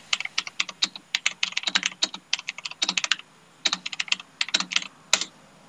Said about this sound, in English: I've just typed him in caps. He thinks I'm shouting at him.